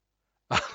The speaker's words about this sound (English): Oh, I have a terrible cough.